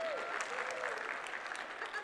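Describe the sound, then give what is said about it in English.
A crowd claps steadily in a dense, continuous patter of applause with a faint whistle or cheer rising above it, holding a fairly even level throughout. “Just give him an applause or something.”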